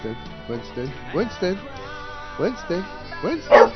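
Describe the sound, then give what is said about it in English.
A dog named Winston barks and yips in a string of short, high-pitched bursts, moderately loud, with a sharper, louder bark near the end. “Oh, God, this dog is unbelievable.”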